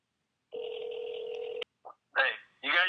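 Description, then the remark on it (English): A phone call being placed: one steady electronic ringing tone lasts about a second, then cuts off sharply and a voice answers over the line. “But I'm going to call him right now because I'm interested in talking about X3 groups.”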